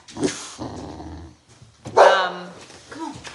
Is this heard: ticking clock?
no